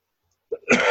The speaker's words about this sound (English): Excuse me. And no, that's not a COVID cough. Just a throat clearing, talking and dry throat cough.